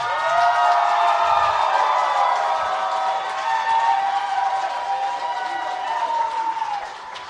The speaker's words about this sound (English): You guys. If you want more, start clapping. And I mean, like.